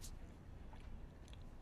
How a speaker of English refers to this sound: sorry. No worries. Chewing and talking at the same time.